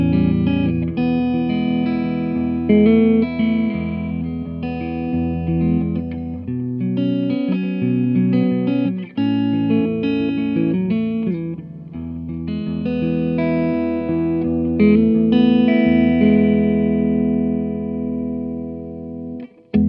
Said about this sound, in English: The Bloom reverb literally works as it's described. Yeah, it blooms. It blooms. It opens up slowly. And then at the very end, you've got this very full open reverb.